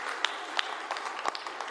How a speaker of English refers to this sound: Come on, somebody, if you love Jesus, go ahead and keep clapping. Come on, give him a hand in this place today.